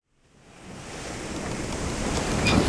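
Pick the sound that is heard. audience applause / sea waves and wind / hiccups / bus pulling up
sea waves and wind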